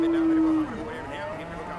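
A single cow moos loudly, a steady low drawn-out note that breaks into a rougher, wavering bellow and trails off over about two seconds, with no talking.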